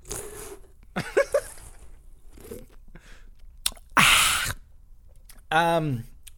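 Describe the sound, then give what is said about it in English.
Someone sips a sour beer right up against the microphone: soft wet mouth clicks, a loud brief slurp, then a short voiced exhale with a falling pitch. “Hold on, I need a into quick the sip. Mic, into the mic.”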